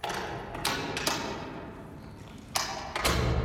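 A Trooper's car door is opened and shut twice, each time a sharp latch click followed by a solid metallic thud, with no one speaking.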